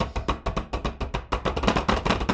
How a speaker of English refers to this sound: You hear the banging on the table.